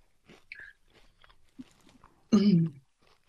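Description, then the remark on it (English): A crunchy chip being chewed: scattered crisp crackles and bites, then a louder, fuller burst of noise near the end. “That's a good crunch.”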